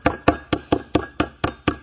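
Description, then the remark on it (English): A rapid run of about nine loud metallic clangs, evenly spaced like steady banging on a cymbal or gong, each strike bright and harsh with a brief ringing tail. No voices. “I am only a noisy gong or a clanging cymbal. You know what that kind of would sound like?”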